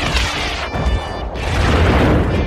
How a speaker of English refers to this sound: Maybe some sounds like a laser gun. There's some monkeys. Or some aliens. Explosions. Missiles launched.